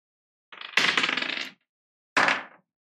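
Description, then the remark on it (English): Dice clatter across a table in two bursts as players roll for a stealth check in a tabletop role-playing game: a long rattling roll of rapid clicks and bounces, a pause, then a shorter tumble that settles quickly. No voices. “Roll stealth if you guys are heading out.”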